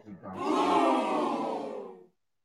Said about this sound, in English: Keep booing me and shit.